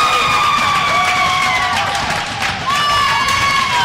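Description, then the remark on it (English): A hockey arena crowd roars and cheers after defenseman Pierre-Luc Saborn scores for the Rebels to come within one goal of the Ottawa West Golden Knights, a loud, continuous wall of noise with a steady horn-like tone droning over it throughout. “The crowd has gone bananas.”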